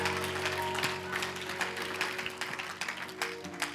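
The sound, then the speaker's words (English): An audience claps together in praise of the Lord, a steady, dense burst of applause that fills the whole stretch, with sustained organ-like tones humming faintly underneath. “Give the Lord a hand clap of praise before you're seated.”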